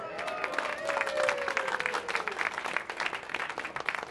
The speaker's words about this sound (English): That cheer in the front was awesome.